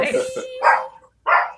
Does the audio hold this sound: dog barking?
yes